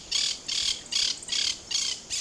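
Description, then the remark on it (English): A monk parakeet squawks six times in a steady, rapid rhythm, each call a harsh, raspy burst, loud with no voices around it. “Well, the monk parakeets originate in Argentina and southern Brazil, where they're pests to farmers.”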